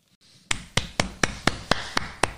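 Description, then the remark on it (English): A small, sparse round of applause: about eight sharp, evenly spaced claps in a steady rhythm, fairly loud and crisp, with no voices. “What a nice little applause.”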